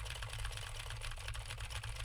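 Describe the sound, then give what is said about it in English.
Rapid, steady typing on a mechanical keyboard with clicky Gateron Blue switches, recorded on a Universal Audio SD1 microphone: a dense stream of sharp clacks over a low, constant hum, with no one speaking. “Now I am speaking on the Universal Audio SD1 and typing on a keyboard with Gateron Blue switches to see how much of my voice versus how much of the keyboard it picks up.”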